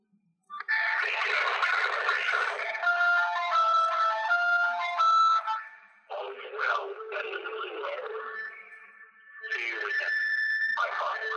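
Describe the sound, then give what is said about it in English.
Electronic phone-line tones over a narrow, tinny channel from an accidentally dialed phone number: steady beeping pitches and stepped tone sequences alternate with bursts of harsh static hiss, fairly loud and continuous, with no voices; the call abruptly stops with a beep. “I called that by accident somehow. Abruptly stops and has the beep.”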